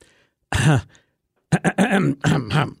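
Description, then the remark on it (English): A loud throat clearing: one rough voiced rasp, a short pause, then a quick run of several choppy harsh bursts, with no other sounds around it. “Here, let me clear my throat on that one.”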